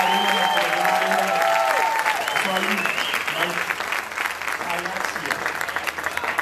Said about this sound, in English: So, but can we just give him one just hand of applause?